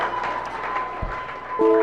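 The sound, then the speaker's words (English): An audience claps in a dense, continuous wash of applause, giving the Lord a shout and a clap at a religious gathering, with a sustained tonal hum and a few low thumps running underneath, loud throughout. “Oh, give the Lord a shout and a clap.”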